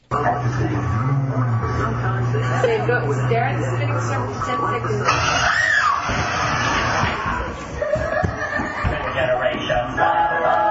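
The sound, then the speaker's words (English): A boy lets out a high, rising scream as his mother scares him and he runs out of the room, amid loud, chaotic shouting and overlapping voices, with a steady low hum running beneath the first half. “And that was the kid running and screaming out of the room.”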